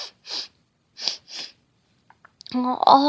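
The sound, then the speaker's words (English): Four short, breathy sniffles come in two quick pairs, fairly loud, followed by a brief pause before a voice starts speaking. “All of that sniffling made Moose sniffle too.”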